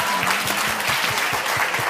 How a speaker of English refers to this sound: Give him one more applause on his way out.